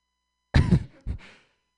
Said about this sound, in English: I'm going to assume you just have a bad cough and I'm not making you nauseous. That's actually one reaction I wouldn't take as a compliment.